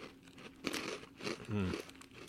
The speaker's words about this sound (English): But it's like that corn pop thing. crunchy.